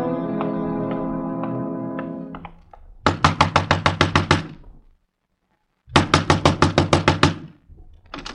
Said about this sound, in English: Next time, knock soft, mister. You want something from Jonesy, the keeper of the garbage pails, the collector of rent, you'll knock soft.